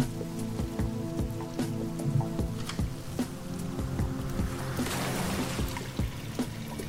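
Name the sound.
rain falling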